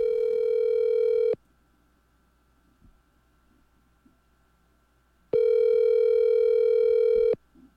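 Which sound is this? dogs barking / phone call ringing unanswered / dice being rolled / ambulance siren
phone call ringing unanswered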